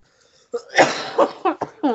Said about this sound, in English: Stop coughing, maybe.